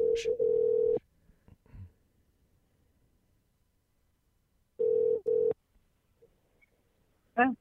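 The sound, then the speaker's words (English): A phone line rings out on an outgoing call: a steady electronic ringback tone in short double bursts, once at the start and again after a quiet pause, fairly loud and clear. “Well, it says it's dialing. I don't hear any ringing. There we go.”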